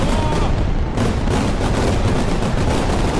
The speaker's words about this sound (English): After midnight arrives in Moscow, Paris comes an hour later. with fireworks shooting off the Eiffel Tower in every direction.